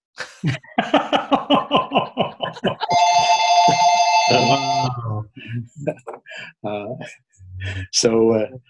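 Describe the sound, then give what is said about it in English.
A phone rings with a steady electronic trill lasting about two seconds, loud, after a burst of rhythmic laughter; a man talks afterward. “I'm trying to shut this phone off.”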